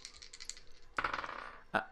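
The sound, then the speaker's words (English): Dice clatter across a hard tabletop in a roll made with disadvantage during a game: a few light ticks, then a burst of rapid rattling clicks as they tumble, ending in one sharp final clack. No voices. “Okay, you roll with disadvantage.”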